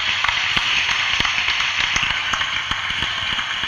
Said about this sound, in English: Okay, there was the auditorium applause. Oh, okay, fair enough. Yeah, that's nice.